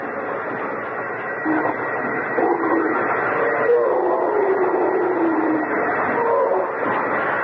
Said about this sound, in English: It's going through like butter. It won't be long. Hey! Arthur, stop the drill.